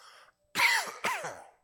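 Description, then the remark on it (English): Two loud, harsh coughs in quick succession from a preacher who coughs when excited during a sermon, each a rough burst that trails off, with a faint breath just before them and no talking. “Man, every time I get excited, the coughing comes.”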